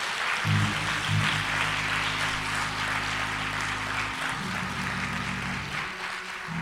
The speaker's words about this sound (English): you ought to give her a round of applause.